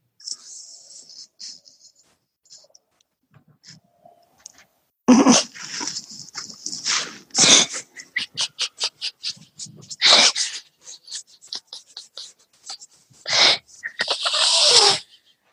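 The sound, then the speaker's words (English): A small dog up at a window snuffles, sneezes and makes short huffing noises in irregular bursts with brief pauses, mixed with soft breathy sounds. “Such a little doggy up to the window.”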